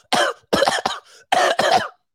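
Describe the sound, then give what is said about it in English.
A person imitates coughing and hacking: five harsh, throaty bursts in two quick groups, loud, with brief pauses between them and no speech. “They coughing and hacking. They blowing that nose. They coughing.”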